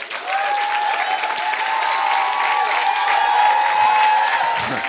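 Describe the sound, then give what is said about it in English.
An audience applauds for Jesus steadily for several seconds, a dense wash of many hands clapping at once with a faint cheer or tone rising over it, loud and unbroken throughout. “Clap for Jesus.”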